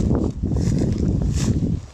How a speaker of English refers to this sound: Let me walk down a little closer to the water's edge. See if we can just stomp through this long grass here. I'm sure it'll be fine.